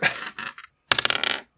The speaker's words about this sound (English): He rolled the dice, guys. He rolled a fucking dice to respond to that.